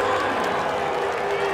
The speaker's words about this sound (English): There's a smattering of boos. There's a lot of clapping, though. There's clapping, but there's a lot of boos as well. In liberal Seattle, Washington? Yeah. You would expect a lot more cheering than that.